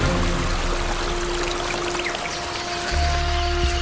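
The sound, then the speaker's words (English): Water pours and splashes steadily in a creek for a few seconds, fairly loud, like a stream running over rocks, with a faint steady hum underneath and no voices. “While they were stopped for a drink, Sir Ivan discovered the gemstone in the creek.”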